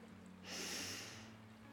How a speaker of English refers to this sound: Let's end this episode by taking a slow, deep breath together. Breathing in through the nose.